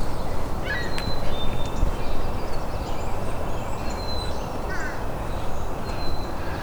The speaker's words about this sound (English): And fish crow. Wow. All on its own. And it's flying away. That's the first fish crow I've had in years.